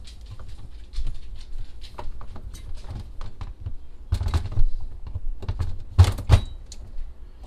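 A plastic on-demand water pitcher, already holding water, is set onto its base on the filter station and slid forward, making a string of light clicks and taps followed by a couple of louder scraping clunks as it docks. No pump runs because the water is not yet filtered. No one speaks.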